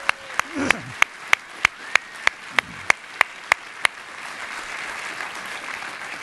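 Applause from an audience for the people who work in the medical profession: a steady run of about a dozen sharp, evenly spaced claps, then a softer, continuous wash of scattered clapping that carries on to the end.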